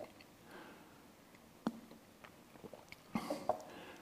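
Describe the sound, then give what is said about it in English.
Quiet sounds of a preacher taking a drink of water during a sermon: a few soft clicks and taps, then small sips and a swallow, with no talking. “I think this is the first time I've taken a drink of water.”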